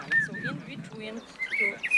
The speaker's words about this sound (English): It was June. There were a lot of birds at Auschwitz.